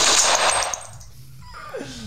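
A loud, rapid burst of automatic rifle fire rattles for under a second, then cuts to near silence before a faint, falling whistle-like tone slides downward.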